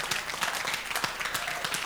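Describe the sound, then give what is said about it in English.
An audience breaks into steady applause, a dense wash of many hands clapping at a fairly even loudness throughout, with no voices standing out above it. “It is a good place to clap.”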